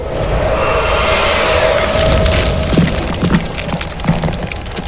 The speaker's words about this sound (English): And she summons a wall of ice before her.